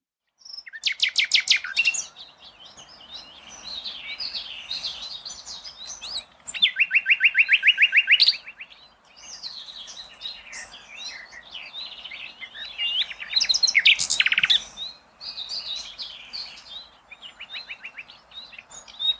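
A nightingale sings alone, loud, in a long varied song of rapid repeated trills, sharp whistles and chattering phrases with brief pauses between bursts.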